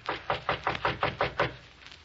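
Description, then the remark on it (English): A quick, steady run of about seven knocks on a private door off a reception room, evenly spaced and moderately loud, lasting roughly a second and a half before fading into quiet. No one speaks. “We'll knock once on this private door here and then go in.”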